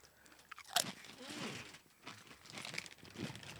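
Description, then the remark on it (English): Crisp crunching of a jalapeno-flavored Uglies potato chip being bitten and chewed, with a sharp snap near the start followed by several rougher crackling chews. “Great crunch.”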